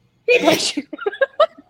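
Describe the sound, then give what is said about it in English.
One loud sneeze bursts out with a sharp, breathy explosion, followed right away by a few short spoken words from other voices. “And sorry, I got a sneeze.”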